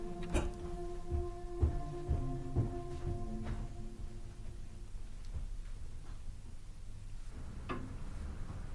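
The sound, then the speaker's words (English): A handful of soft, irregular clock ticks and clicks over a faint low ringing hum that fades midway, leaving quiet with one last tick near the end. “Clock. Clock. Click. Low, softly tick.”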